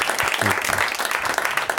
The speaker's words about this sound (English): Well, let's see how many of them applaud for Samm Levine, everybody.